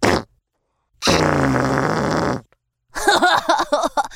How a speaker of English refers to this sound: Zook loved to fart at his friends.